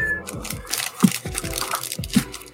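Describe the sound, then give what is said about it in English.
A pet cat, Kato, meows a couple of times, wanting to go outside, with the calls spaced about a second apart amid some background noise and possible faint talking. “I'm hearing cats.”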